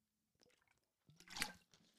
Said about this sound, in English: Got to drink some water for this one.